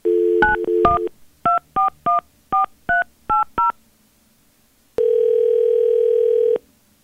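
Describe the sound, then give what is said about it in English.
A telephone number is keyed in as a quick series of about nine short, bright touch-tone beeps in an uneven rhythm, followed after a pause by one long steady ringing tone, as radio hosts at B93.7 call a listener from the station's number. “We'll call her from our number, and we'll see if we can get any information.”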